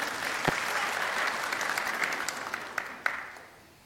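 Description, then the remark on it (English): An audience applauds steadily on Priesthood Sunday, dense overlapping claps with a few sharper individual claps standing out, then the applause thins and fades away at the end. “No clapping is needed.”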